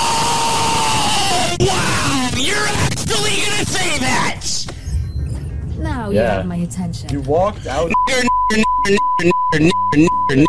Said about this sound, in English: I couldn't find an uncensored version, but you can guess what word he's screaming.